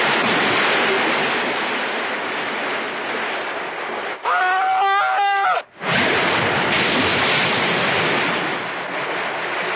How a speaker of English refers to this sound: Henry, it sounds like a waterfall!